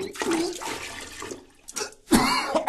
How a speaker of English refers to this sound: If there was anyone else in the bathroom with me, I couldn't hear them over the sound of my breakfast being puked into the toilet.